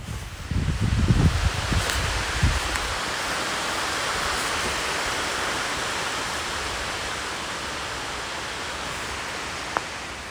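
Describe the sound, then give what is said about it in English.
Steady, even hiss of light rain just starting to fall outdoors, pattering continuously across the whole stretch, with a few low thumps in the first seconds and one sharp tick near the end. “Oh, can you hear? It's just starting to rain.”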